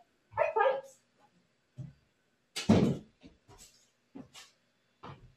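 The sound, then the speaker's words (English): A small puppy barks in a handful of short, high yaps spaced irregularly over a few seconds, one burst louder than the rest, with no talking around it. “And I'm going to go shut the door so that my little puppy will stop barking.”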